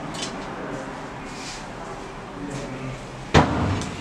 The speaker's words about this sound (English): It's a very heavy door. Yes, and trying to maneuver and now add, if you have groceries, look how it's not kept or cleaned, it's not painted.